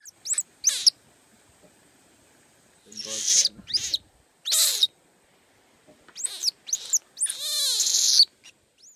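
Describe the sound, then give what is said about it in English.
A young animal named Miley, met at the Boiling River, gives frightened alarm calls meaning a bird is nearby: a series of sharp, high-pitched squeaks and chirps in quick bursts, ending in a longer wavering squeal, fairly loud with no talking. “He says this sound means, there's a bird close by and I'm scared.”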